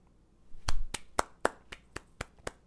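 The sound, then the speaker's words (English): Around eight sharp, crisp hand claps in a quick, steady rhythm, a single person giving himself a round of applause, with no talking during the claps. “Oh, and I wanna mention real quick, can we just give myself a round of applause?”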